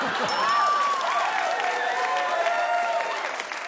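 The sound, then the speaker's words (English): An audience claps steadily for a few seconds, a dense patter of many hands mixed with high whoops and whistles, tapering slightly at the end. “Thanks for that one clap, everyone.”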